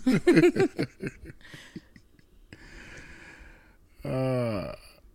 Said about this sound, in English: And I do want to apologize to y'all real quick. If you have heard snoring this entire episode, it's Fender. He's snoring. Apologies.